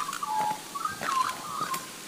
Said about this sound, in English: And they're everywhere. And they're these black and white birds. But their song is so crazy and weird.